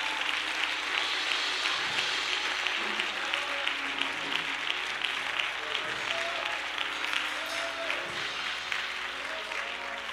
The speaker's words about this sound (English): Clap your hands and give the Lord praise.